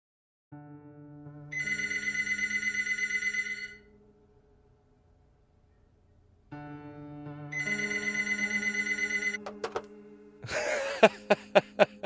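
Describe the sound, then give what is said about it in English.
A telephone rings loudly in two long trilling bursts separated by a pause, followed by a few sharp clicks and clatters as the handset is picked up. No one speaks. “I started talking on the phone before answering it.”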